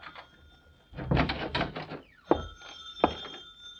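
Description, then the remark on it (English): A telephone bell rings steadily, its bright metallic tone sustained to the end, preceded by a second or so of bumping and rustling noises. “Uh-oh, the phone.”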